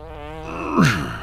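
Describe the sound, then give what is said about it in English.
A single drawn-out fart inside a car with the window rolled up, buzzy and raspy, that swells into a louder, sputtering burst near its end before trailing off. Fairly loud, with no talking. “I say there's never been a better time to fart than I let him have just then.”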